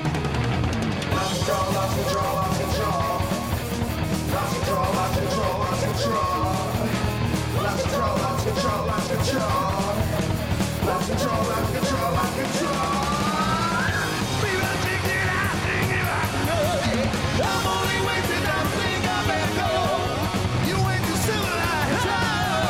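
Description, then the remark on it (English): A loud, driving rock song plays continuously, with dense guitars, steady drums and a clanking cowbell in the mix, plus shouted, yelling vocals over the top. “Cowbell.”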